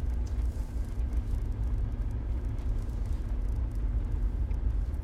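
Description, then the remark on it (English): Steady low rumble of road traffic, a continuous engine and tire drone that holds at an even level throughout, with no voices. “I'm going to leave her because there is a bit of traffic.”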